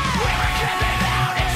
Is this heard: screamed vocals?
yes